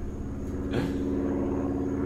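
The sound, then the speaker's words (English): An airplane circles over a house near an airport, a steady low engine drone with layered tonal harmonics and a brief airy swell partway through, continuous and fairly loud with no voices. “So they just fly in circles like they're waiting for clearance or whatever.”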